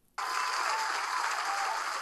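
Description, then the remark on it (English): An applause sound effect: a burst of crowd applause starts abruptly and continues steadily at full volume, dense clapping with no voices over it. “And I want to give an applause to the applause sound effect.”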